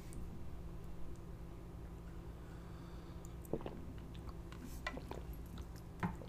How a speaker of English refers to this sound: I'm going to take a sip of my water here.